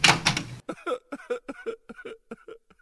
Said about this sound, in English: Just open the door. I can. Everything appears to be normal as I walk up to the door, and as we open the door...